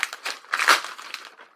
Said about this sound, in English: All right, here we go. Opening the wrapping paper, pulling out the disc-like item inside. You can hear the rustling.